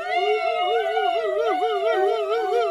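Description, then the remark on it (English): A group of voices, sitting up with eyes closed, wails together as loud as they can in a loud, continuous rising-and-falling tone, imitating a police car siren for a few seconds with no break. “I want you to sit up and first give me the sound of a police car”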